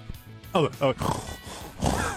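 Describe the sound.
A man imitates a pug, letting out two short, whiny yelps and then a run of wheezy, snorting grunts that rasp on for over a second.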